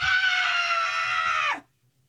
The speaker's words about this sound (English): I need a place to scream right now. I'm gonna go under the desk quick. Hold on.